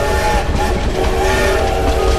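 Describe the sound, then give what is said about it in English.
A train rumbles steadily along a railway line, a loud continuous roar with a low mechanical hum and faint rhythmic rattling, and no voices. “On the 12th of September 1893, a railway line opened from Killorgan to Valentia Harbour Station, linking it to the rest of the Irish rail network.”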